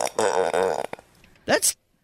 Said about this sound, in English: First of all, that's a horrid sounding burp. Sound like a fart. Right? Like, take another listen to that.